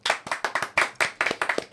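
A quick run of about nine sharp hand claps in a steady, even rhythm, fairly loud and crisp, with no talking over them.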